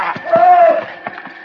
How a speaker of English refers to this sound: Did you hear something, Mr. Dillon? I'm not sure, Chester, but pull up. Yeah, but whatever it was, it came from over there toward the creek bank. Sure sounded to me like... That's what it is. It's somebody yelling. Yeah, it's down that way.